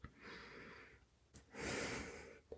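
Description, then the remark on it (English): Two long, breathy inhales drawn through the nose, the second louder and fuller, with short sniffy catches between and after them. No talking. “Inhaling.”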